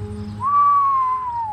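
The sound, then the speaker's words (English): A man surveying a yard lets out a single long whistle that holds a steady mid-high tone for about a second, then slides gently downward in pitch, over a faint low hum. “The man surveyed the yard and let out a long whistle.”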